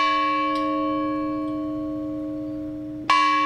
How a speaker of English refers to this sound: A bell from the unfinished World War II battleship USS Illinois was used in Champaign to remember those lost in the September 11, 2001 terrorist attacks.